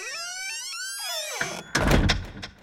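A door swings with a long, high creak, then slams shut with a loud, heavy bang and a brief rattling thud. No voices.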